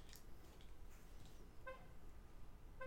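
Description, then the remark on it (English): Two brief car horn chirps sound about a second apart as a car is remote-locked, over a steady low background rumble. No one speaks. “Just making sure my car's locked.”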